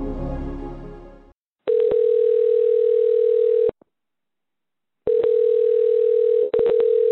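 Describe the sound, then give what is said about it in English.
A telephone ringback tone of an outgoing call purrs twice, each long steady burr lasting about two seconds with a clear pause between, loud, following a brief burst of music at the start. “I'm ringing you now.”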